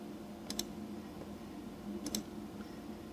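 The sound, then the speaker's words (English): Two quick double clicks of a computer mouse, clicking on hyperlinks to view the kinematics for each trial in a report, one pair early and one about a second and a half later, crisp against a low steady hum with no talking. “And I can view the kinematics for each trial by clicking on the hyperlinks.”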